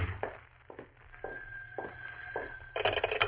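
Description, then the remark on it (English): A telephone bell rings insistently, a sustained metallic trill with repeated rattling pulses, growing louder over a few seconds, with no one speaking. “Oh, and there's my phone. Now what?”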